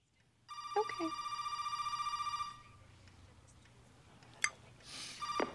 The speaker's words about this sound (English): And then the phone rings, and Josh, this is what we hear.